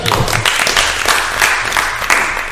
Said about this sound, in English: Oh, no, no, let's clap up for you.